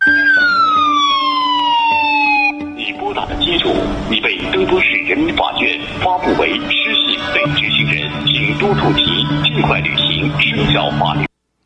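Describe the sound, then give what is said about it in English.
A loud, siren-like phone alert in China, played instead of a regular ring for an incoming call from a caller with a low social credit score, opens with a wailing tone sweeping downward, then gives way to a dense, busy stretch with voices mixed into a steady high hum. “Instead of getting a phone, just a regular ring, and you look down and you see the name, this is what happens to your phone in China.”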